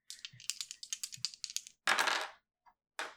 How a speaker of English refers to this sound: That's the sound I don't like to hear. Rolling up dice.